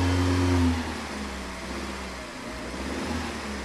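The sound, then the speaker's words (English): A car engine revs loudly for a moment, then settles into a steady, rumbling drone as the car is started across railroad tracks in Oklahoma on a dry day, with no voices. “Without thinking blindly, I started the car across the tracks.”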